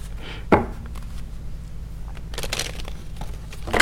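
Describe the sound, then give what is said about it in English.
A deck of cards shuffled: a sharp papery snap, a crackling flurry of riffling cards midway, then another quick slap at the end, with no talking. “I'm just having some difficulties here with shuffling these cards.”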